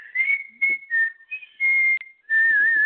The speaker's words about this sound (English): After he had approached this fearful tree, he began to whistle.